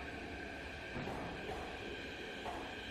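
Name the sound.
train station ambience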